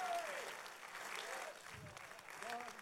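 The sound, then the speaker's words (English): An audience claps their hands in praise of the Lord, a steady, dense, continuous wash of applause, with raised voices cheering and whooping over it in rising and falling cries. “There ought to be a praise in your lips right now, clapping your hands.”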